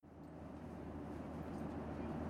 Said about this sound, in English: The drone of the motors made me drowsy.